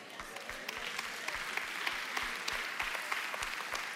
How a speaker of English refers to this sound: Okay. I'm all for the claps. I clap. I'm all for the claps.